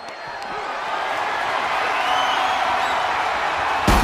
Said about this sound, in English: Oh, and slams his back into that ladder.